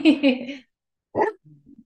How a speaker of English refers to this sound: The dog wants in, so I'm going to let him in, but you can just welcome yourself back.